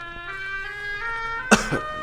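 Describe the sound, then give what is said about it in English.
A short, dry cough bursts out once with a quick smaller follow-up, fairly loud over a steady, droning tonal background. “Yeah, and I heard that dry cough.”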